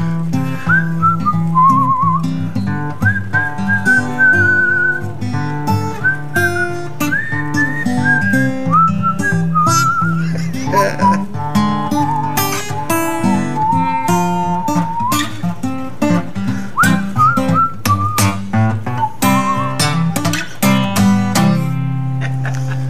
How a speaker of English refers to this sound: Whistle. Here we go.